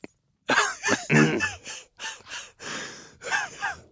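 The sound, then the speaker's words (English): A run of harsh, raspy coughs and rough throat clearing, several bursts in an uneven rhythm over a few seconds, fairly loud with short pauses between, and no talking. “Excuse me, I've got a frog in my throat.”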